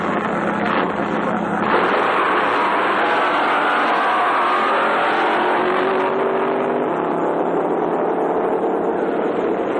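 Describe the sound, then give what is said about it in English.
The Moon Eyes supercharged drag racing car, with a 300 cubic inch blown engine, roars loudly and steadily for the whole stretch in one last burst of speed, a dense, harsh engine blast with a rising whine as it accelerates, continuous with no talking. “Last minute plug inspection and Moon Eyes is ready, ready to pull up on the line, ready to unleash the power in the 300 cubic inch blown engine in one last burst of speed.”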